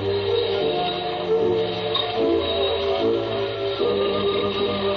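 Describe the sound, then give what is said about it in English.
A dense, unbroken roar of millions of small steel balls clattering through slot machines played by about 300 men on the Ginza in Japan, layered with ringing electronic tones and a steady metallic rattle at constant loudness. “They just stand there and work these things, and millions of little steel balls go up and down in the slot machines.”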